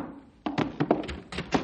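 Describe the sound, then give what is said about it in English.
An automatic door at the Rangers' headquarters opens by itself with a run of mechanical thunks and clunks, six or so irregular knocks of moderate loudness after a quiet start, with no voices. “Hey, the door's opening by itself.”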